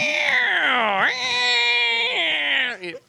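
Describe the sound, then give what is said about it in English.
A person vocally imitates a neighbor's carpenter's table saw: a loud, sustained, buzzy whine lasting about three seconds, its pitch sliding down, jumping back up, dipping again, then trailing off. “That sounded like a table saw. I've practiced that sound.”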